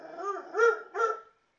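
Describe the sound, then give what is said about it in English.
A dog, Harley, gives a short run of vocal, drawn-out barks as she gets ready to eat, the last two louder and rising to a strong whining, yowling pitch before stopping. No people are speaking. “She's announcing it, I think.”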